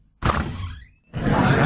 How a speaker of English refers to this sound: You might have to open the door again. Okay, sorry. Open the door, then. I can't. It's the handle.